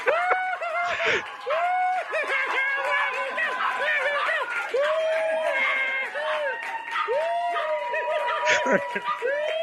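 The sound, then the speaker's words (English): A dog with a disorder, heard in a played video, whines and yelps over and over in rising-and-falling cries, fairly loud, with muffled snickering and chatter mixed in underneath. “That dog has a disorder, and we're making fun of it”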